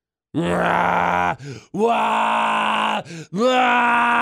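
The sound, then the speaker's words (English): A person imitates a scream with three long, loud, strained vocal wails, each about a second, broken by quick gasping breaths. Alone, with no talking. “Yeah, only the scream was much worse than that.”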